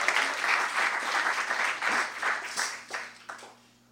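An audience breaks into steady, dense applause, a thick wash of many hands clapping at once that holds strong for about three seconds, then thins and fades to a few scattered claps.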